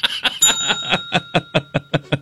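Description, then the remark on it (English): A small bell is struck hard once with a whole hand coming down across it, its bright ring lingering thinly, while rhythmic bursts of laughter pulse steadily beneath it and gradually spread apart. “I gotta stop hitting that bell so hard.”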